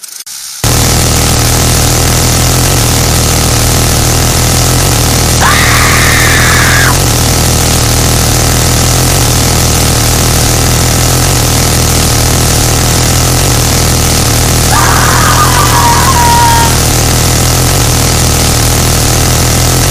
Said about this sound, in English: It's an M134 minigun, 6,000 rounds a minute. Used to use it on a UH-1 Huey Iroquois helicopter as a door gunner. I think GE made that thing. General Electric. Fires a huge fucking round. 7.62mm percussion-primed rifle cartridge. It's huge.